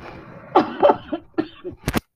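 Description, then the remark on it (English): A series of harsh coughs, several bursts in quick succession with a sharp, loud final cough, and no speech. “Oh boy, these coughs are coming in loud and clear.”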